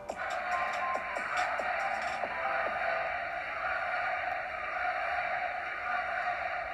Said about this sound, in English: and as you can tell from the birds chirping, it's a good day today.